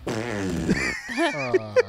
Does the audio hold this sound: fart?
yes